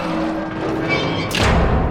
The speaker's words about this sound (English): The door swung closed behind us.